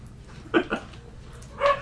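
small dogs barking

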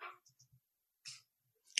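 typing on a keyboard

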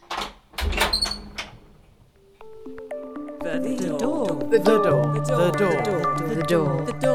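door creaking open

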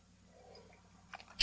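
sipping whiskey

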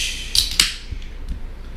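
beer can cracked open

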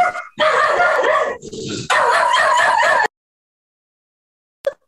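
several dogs barking

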